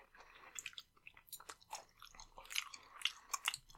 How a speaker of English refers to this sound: I'm going to just spend that entire talk crunching through one entire big fat piece of carrot.